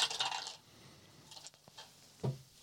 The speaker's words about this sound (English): roll your dice, and if you fail, we can go from that list. If you succeed, you can still ask some of those questions.